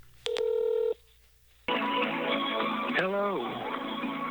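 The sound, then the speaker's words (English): A short burst of electronic telephone tones, a quick dial-like beep sequence as a call connects to a phone tree, then a pause before a recorded voice begins speaking over a steady line hiss. “You have dialed into Here and There Along the Echo, a guide to the Echo River for drifters and pilgrims.”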